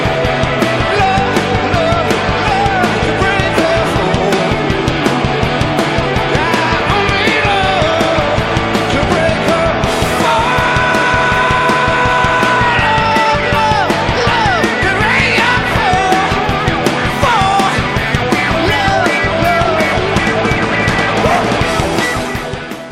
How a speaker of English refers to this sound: But that final chorus has that big scream, the big scream at the end, and that's really the most impressive spot about this song.